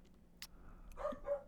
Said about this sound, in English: Why is your dog barking now? He's an idiot.